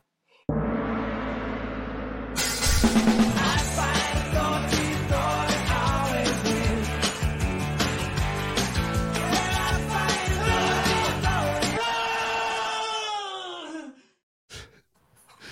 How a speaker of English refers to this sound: My favorite is how the blood-curdling scream makes it into all of the versions. It has to. I mean, that's just there.